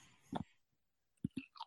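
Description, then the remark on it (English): Crisp crunching of a tortilla chip with mild salsa being chewed, the first scoop from a new container: one bite, a pause, then a quick cluster of three crunches. No talking. “Yes, you probably can hear me chewing.”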